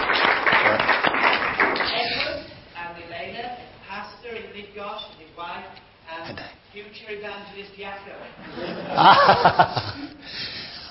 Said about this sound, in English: Give them a clap.